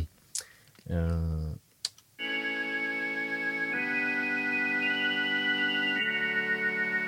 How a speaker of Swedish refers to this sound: Det är konstigt. Hammonden är den ljusa och fläktorgen är det som låter lite som ett dragspel eller munspel eller melodika typ.